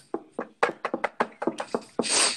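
About a dozen quick, hollow knocks on wood in a brisk, slightly uneven rhythm, ending with a short burst of rustling hiss. No one speaks.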